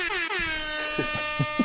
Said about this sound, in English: That's what the air horn's for.